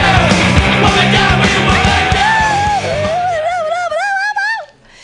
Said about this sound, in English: Everybody, clap your hands in a wild slappy-like motion